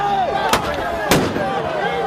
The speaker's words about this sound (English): If you do, that explosion at face level could blind a person, it could deafen them for life, it could do both.